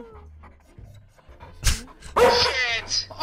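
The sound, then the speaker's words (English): A dog lets out a couple of short, strained whimpering yelps, fairly loud, with quieter breathy panting and faint human sounds around them. “Oh, no, my dog went.”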